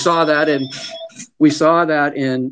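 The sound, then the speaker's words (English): The speaker's phone rings with a loud electronic ringtone, steady melodic tones repeating in short bursts, pausing briefly before sounding again. “We saw that in, forgot to turn off my phone.”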